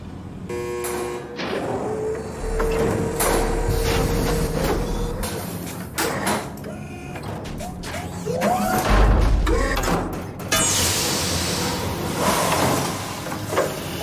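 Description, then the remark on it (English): Heavy sci-fi cell block doors in a video game, on Purgatory, slide open with whooshing hisses and clanks as a control is hacked, while a big robotic arm whirs and grinds underneath lifting things, a busy layered mechanical racket that stays loud throughout, with no voices. “If we hack that control, every door on the cell block opens.”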